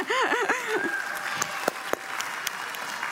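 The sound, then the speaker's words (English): An audience applauds steadily for about three seconds, a dense wash of clapping with a few sharper individual claps and some brief vocal whoops rising over it at the start. “Yeah, you can clap for her.”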